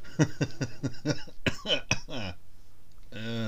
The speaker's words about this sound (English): I can when you keep coughing everywhere. Yeah, it's good, isn't it? Coughing all over the internet.